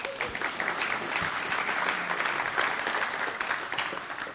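An audience claps steadily for several seconds, a dense, even wash of many hands with no voices rising above it.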